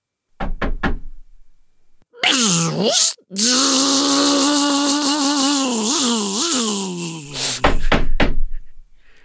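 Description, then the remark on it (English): Three sharp knocks on a door aboard a ship late at night, then a long, wavering, moaning groan, followed by another quick set of three loud knocks. “late into the night while you're working, there is definitely a knock at your door.”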